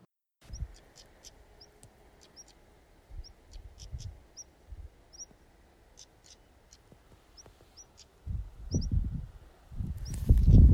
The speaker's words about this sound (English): I hope you can hear all those birds.